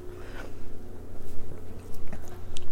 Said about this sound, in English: First sip.